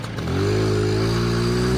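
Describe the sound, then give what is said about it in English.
A small moped engine revs in Camden Town, its buzzing tone climbing and then holding steady at a loud, even drone for a couple of seconds. “I'm on my trusty moped, and in front of me, on the handlebars, I've got the knowledge board, which contains the full list of possible destinations and the shorter version of the travelling rules.”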